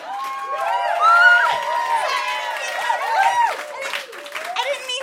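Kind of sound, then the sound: crowd, audience applause and cheering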